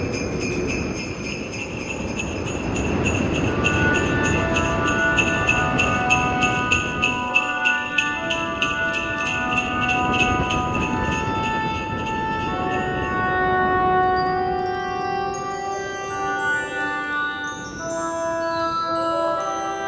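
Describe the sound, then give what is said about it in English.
Jingle Bells played on chiming bells as a news jingle: a bright, jingly tune plays on its own, ringing tones layered over a busy, sustained background, the melody stepping through clear repeated notes for the full stretch. “There is no news jingle, except for jingle bells.”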